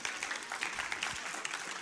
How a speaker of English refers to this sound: Go ahead and applaud because you're sitting next to them and they're